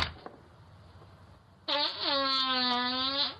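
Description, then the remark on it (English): After a quiet stretch of low background noise, a loud, sustained buzzing fart from a man trying to hide it outside, picked up by a doorbell camera, holding a steady low pitch with rich harmonics for nearly two seconds before cutting off. “My boyfriend met my parents this weekend, and he tried to hide a fart outside. He ended up alerting our doorbell camera.”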